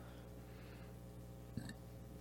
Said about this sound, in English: Sorry, almost burped into the mic. Yeah, we might need to kill the whole beers during recording thing.